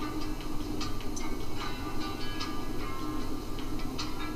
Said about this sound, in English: Train.